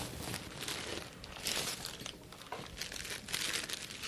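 Crinkling and rustling as package wrapping is torn open, steady bursts of crackly plastic noise lasting several seconds with no one speaking.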